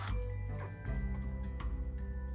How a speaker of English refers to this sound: Hold on, I have to go let the dog out. Because he's barking at me.